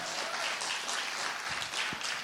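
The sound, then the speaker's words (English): A church audience claps and applauds steadily in praise of God, a dense wash of many hands at once in continuous, fairly loud applause with no talking. “Come on, now you can clap and give God praise.”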